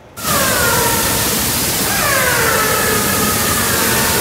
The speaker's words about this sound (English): You're listening to the vocalizations of orca whales in the waters of our Salish Sea.